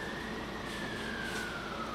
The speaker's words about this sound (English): The crew jump in the trucks, which they call pumps, the large garage doors of the station roll open, and they're off to the emergency scene, sirens blaring.